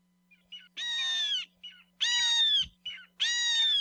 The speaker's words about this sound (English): Eo, or Hawaiian hawk, is the only native hawk found in Hawaii. Fossil evidence shows they once lived on all the main Hawaiian islands, but today are found only on the Big Island, where their population is considered stable, or perhaps even increasing